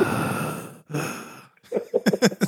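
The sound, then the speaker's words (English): Heavy breathing right into the microphone: two long, loud, rushing breaths close up, followed by a few short voiced bursts that sound like chuckling or throaty noises. “They're just breathing in the microphone.”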